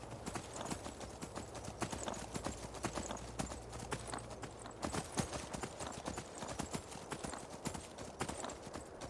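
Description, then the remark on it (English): Horse hooves clip-clop steadily in a brisk, continuous rhythm, fairly loud, as the horse Shadowmere is ridden down a hill and across a road toward the Nightgate Inn, with a low hum underneath for the first half and no talking. “Gotta get used to riding a horse again.”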